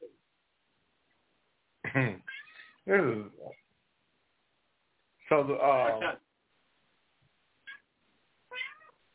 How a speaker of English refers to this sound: who's got a cat? Who's on the show with a cat?